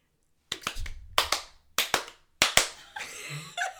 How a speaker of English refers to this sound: Nope. You're just clapping at me. I don't know what this means.